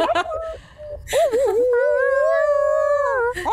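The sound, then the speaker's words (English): A dog whimpers in short, wavering whines, then lets out a long, sustained howl that bends slightly in pitch, fairly loud. “She was like, I was gonna howl back.”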